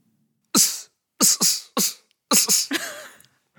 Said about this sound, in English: That's me. That was me boxing. Oh, okay. Yeah, I wondered what was going on, if it was a sneeze or something.